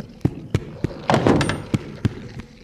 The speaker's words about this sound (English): You busted in the door. 'Tisn't safe there.